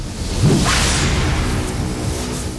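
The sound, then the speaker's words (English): A single sharp sword whoosh slices through the air, a quick rising swish with a bright hiss that trails off into a low, rumbling wash. No voices are present. “So Ninigi picked up his sword and sliced the tether that connected him to his essence.”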